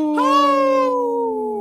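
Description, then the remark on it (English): A person on the radio show Native Roots Radio imitates a wolf howl: one loud, sustained, mid-pitched wail that holds steady and then sags slightly in pitch over about a second and a half, with no other voices. “Howl! Well, that was a lively howl, yeah,”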